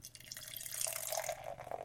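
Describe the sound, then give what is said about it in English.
Kirkland sparkling water pours steadily from a can into a glass, a continuous splashing and fizzing stream lasting a couple of seconds with no one speaking. “I'm going to pop my top now. Please. Ooh. Oh, my top. Nice. And Le Pour.”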